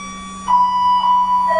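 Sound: ringing bell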